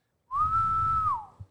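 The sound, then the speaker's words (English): A single sustained human whistle, made from a boat to attract whales, rising slightly at the start and sliding down at the end, held steady for about a second over faint low rumble, with a short thump just after. “But this, he just pulls his boat, like gets out a bit, pulls up and just starts whistling.”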